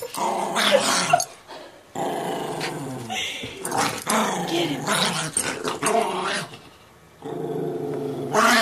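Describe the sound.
Two dogs, Frankie and Memphis, snarl and growl while happily play-wrestling, almost continuously in rough, overlapping bursts. The growling is loud, with a brief shout from a person partway through.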